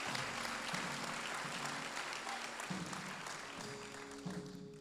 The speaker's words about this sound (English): Come on, clap together today